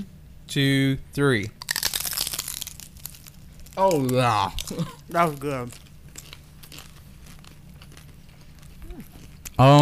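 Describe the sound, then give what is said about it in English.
Several people bite into crunchy, meat-filled taco shells at once after a spoken countdown, giving a loud burst of crackling, followed by scattered crunching and chewing between brief bits of talk. “It's kind of like it's soggy where all the meat has been sitting, but the rim of the taco is still crunchy, if that makes sense.”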